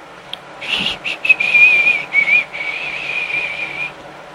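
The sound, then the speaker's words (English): A lone human whistle holds a thin, wavering high tune for several seconds, starting with a few short broken notes before settling into long sustained tones, with no talking. “If you ever hear his whistle, you know something creepy is about to unfold.”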